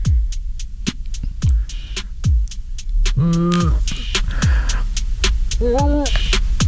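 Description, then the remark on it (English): Two short, strained humming attempts with the nose pinched shut, each cutting off abruptly, over a steady low thumping pulse in the background. “Okay, if you pinch your nose tightly, it makes it difficult to hum.”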